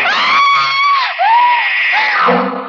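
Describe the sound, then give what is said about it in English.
A loud, piercing scream from a person on a bed as a knife slashes down, held for nearly three seconds, its shrill pitch wavering and briefly dipping before surging up again, alone with no talking. “I screamed and rolled over on the bed just as the knife slashed down.”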